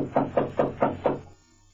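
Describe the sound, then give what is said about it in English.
Five quick, evenly spaced knocks rap on a wooden door in the City of the Dead, firm, each with a short hollow ring, followed by a moment of quiet. “Oh, here's the door.”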